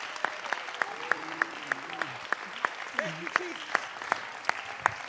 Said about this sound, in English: If you believe it, clap your hands right now unto the Lord.